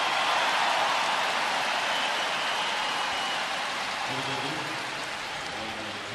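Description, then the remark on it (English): A large basketball arena crowd cheers and applauds for the Warriors' Stephen Curry as he sits down, in a loud, steady, hissing roar that eases slightly near the end, with a faint voice surfacing beneath it in the last couple of seconds. “Curry sits down and listens to the crowd reaction for Stephen Curry.”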